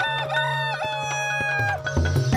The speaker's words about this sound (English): Elizabeth kind of hates the rooster because it keeps he keeps crowing